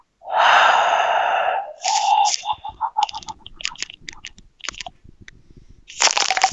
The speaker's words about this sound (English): Let me get my rock, paper, scissoring hands warmed up. I'm gonna put a glove on. That's your lucky glove. I'm blowing on my fingers.